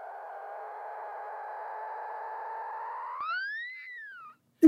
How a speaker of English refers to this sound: And now we have a clip of Mama Dolphin with her baby.